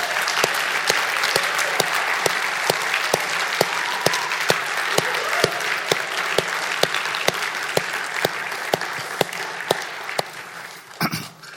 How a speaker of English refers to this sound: If you're going to be baptized or if you're doing the baptism, it takes some time for you guys to go back there and get prepared for this. So let's clap for them as they all make their way back there.